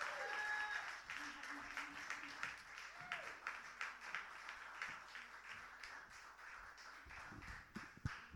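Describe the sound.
An audience claps steadily for about eight seconds to welcome a performer to the stage, a dense, crackling patter of many hands with a few brief voices murmuring underneath before it thins out near the end.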